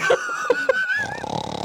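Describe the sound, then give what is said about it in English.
A person imitates snoring with a few short throaty grunts and a whistly tone, then a rattling, fluttering snort, fairly loud, with no other talk. “It's like 8 hours of us snoring.”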